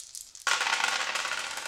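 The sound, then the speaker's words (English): Dice clatter across a table, rolled to attack with a fireball in a game, starting abruptly after a brief quiet moment and rattling continuously to the end, fairly loud with no voices. “And the dice still hate me.”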